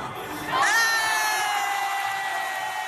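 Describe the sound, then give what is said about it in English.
In a cell phone video, a crowd suddenly erupts into loud cheering at a slam dunk, with high-pitched shrieks and whoops rising out of the roar and holding steady for a couple of seconds. “In the cell phone video her friend took that went viral last year”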